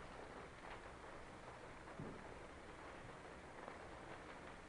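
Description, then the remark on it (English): Steady rain falls outside as a continuous, even hiss with no voices, fairly soft, broken only by a faint low thump around the middle. “For example, right now it's raining out, so you can hear the rain.”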